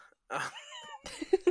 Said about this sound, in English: Sorry, I had a cat. I had a cat banging on my kid's door, and I was like, why are you doing that?